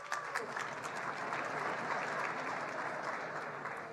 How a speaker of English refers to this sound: Okay, applaud then. Go on.